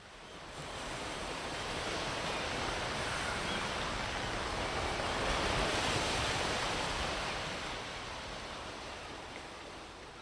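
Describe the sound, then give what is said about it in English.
Steady ocean surf fills the whole recording, a broad rushing wash that swells gently toward the middle and eases off again, with no voices over it. “Send in the waves.”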